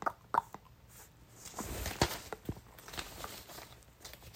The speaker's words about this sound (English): Most of these you can hear me crumpling and tossing.